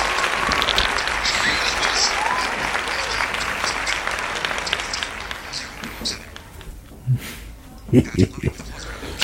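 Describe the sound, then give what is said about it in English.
A burst of crowd applause played from a soundboard app during a phone interview. It is dense and steady for about six seconds, then thins to scattered claps as a few voices come in at the end. “There's nothing like applause. Slightly unearned applause.”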